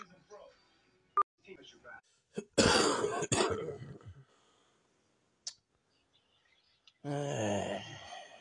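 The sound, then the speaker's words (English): A person coughs and clears their throat in a few rough, harsh bursts, followed by a short voiced groan-like sound near the end. “Still got that damn cough.”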